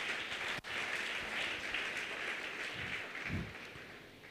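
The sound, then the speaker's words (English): A church audience claps together in a steady wash of applause, dense and sustained, with a few louder low thumps near the end and no voices over it. “Clap your two hands for Jesus.”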